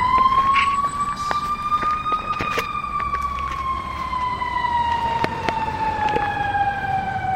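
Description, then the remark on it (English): The siren of a big, heavy fire truck with flashing lights wails loudly as it drives through traffic, getting cars to pull over, its steady tone slowly rising and then sliding back down, over a rumble of engine and traffic noise with no one speaking. “you're going to hear them fire it up. And it's basically going to be yelling at the other cars”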